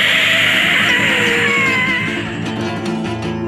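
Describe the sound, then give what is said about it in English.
A loud, harsh monstrous demonic scream, like a cat's caterwauling yowl, sustained for several seconds with a wavering, gliding pitch and rough, layered tones, with no talking; a demonic creature screams to scare away a fox. “He places himself between his beloved and the fox, screaming the scream of many monsters and baring his retractable fang.”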